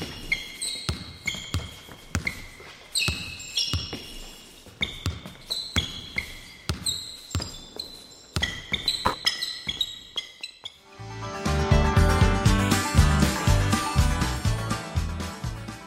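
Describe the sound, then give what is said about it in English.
A basketball bounces in a steady rhythm of hard thuds at a college basketball game, mixed with sharp high-pitched sneaker squeaks. Later a louder, dense wash of noise swells in while the bouncing continues underneath. “And with that, tip-off is set, and we're back to enjoying the intoxicating sounds of college basketball, baby!”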